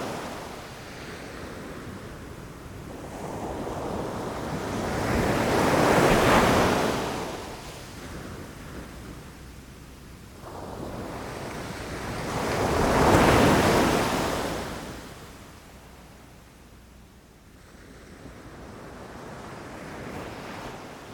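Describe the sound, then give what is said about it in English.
Ocean waves on the Isle of Coll roll in and break on the shore in slow, broad surges, two large swells cresting about seven seconds apart over a steady wash of surf, with light wind and no voices. “And that peace is something I get to take home with me and find again and again as I close my eyes, listen to the waves, and think back of this journey to the Isle of Coll.”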